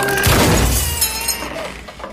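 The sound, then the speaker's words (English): A heavy crunching thud as a door accidentally gives way while being forced open, followed at once by loud glass shattering and a trail of bright tinkling shards that fade over about two seconds. No voices. “You broke her door.”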